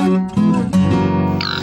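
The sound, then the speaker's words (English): Feral pigs grunt and snuffle while digging and rooting, a steady stream of low, buzzy, overlapping grunts with a brief higher squeal near the end. No one speaks. “The sound of feral pigs digging and rooting.”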